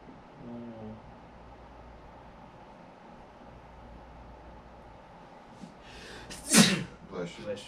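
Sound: sneeze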